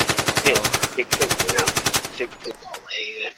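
Loud machine gun fire in two rapid, evenly spaced bursts with a brief break between, followed by a few scattered pops and a ringing, high-pitched tone as it fades.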